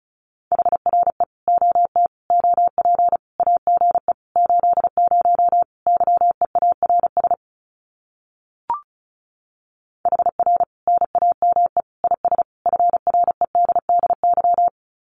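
Fast Morse code at 35 words per minute sending common QSO phrases: a single mid-pitched tone keyed in rapid dots and dashes, breaking for a pause marked by a brief click, then resuming. No voices.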